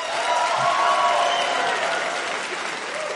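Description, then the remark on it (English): At a stand-up comedy show, audience members who don't have kids clap when asked, a dense, sustained wash of many hands at a fairly strong level that holds for the whole stretch and eases slightly toward the end, with no voices standing out. “Round of applause if you don't have kids.”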